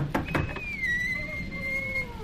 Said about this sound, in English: Maybe we should knock first.